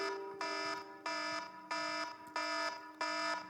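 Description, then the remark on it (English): An alarm blares in a steady repeating pattern, five loud pulsed tones about two-thirds of a second apart, each a harsh harmonic honk with no one speaking. “There's an alarm going off, guys.”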